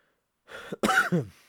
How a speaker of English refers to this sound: I'm mostly recovered. In fact, the reason I'm probably coughing right now is, you know, very likely to do with the fact that right before this, I saw some funny shit